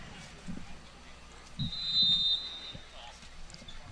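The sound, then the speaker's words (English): A single sustained referee's whistle blast at a BYU soccer match after the ball went into the stands, high and steady, lasting over a second above a low murmur of crowd noise and indistinct voices. “And you heard the whistle.”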